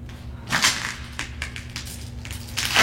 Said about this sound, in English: What happened here? Broken glass.